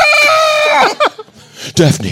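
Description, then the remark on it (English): A loud, harsh scream holds high and strained for almost a second, then breaks into shorter shrieking bursts. It sounds like a person voicing a violent scream in response to a gentle knock at a door. “Only to be slightly startled by the violent screams in response.”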